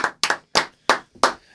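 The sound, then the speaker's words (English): A handful of sharp, loud hand claps at an uneven, unhurried pace, about six in total including a quick double clap, with no voices, clapping for hockey player Iafallo scoring his first goal in the game. “Let's give it up for him. Let's clap it up.”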